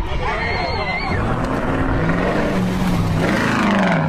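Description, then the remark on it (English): A truck engine roars past, a steady loud rumble whose pitch climbs and shifts partway through, with faint crowd chatter mixed in underneath. “That was a truck.”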